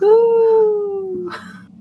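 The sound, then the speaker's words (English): A person imitates whale song with a single long, drawn-out vocal moan that slides slowly downward in pitch, then ends with a short breathy exhale. It is loud. “Whale sounds.”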